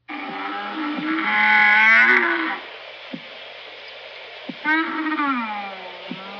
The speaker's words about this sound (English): That was a camel. That was a backing camel.